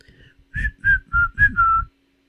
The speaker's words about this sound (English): I don't know why it's whistling.